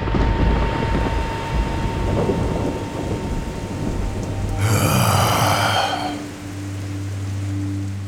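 A deep, rolling roar of thunder rumbles steadily, then bursts into a loud, crackling crash partway through before settling back into a low, sustained drone.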